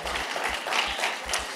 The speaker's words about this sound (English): Don't clap too much for him.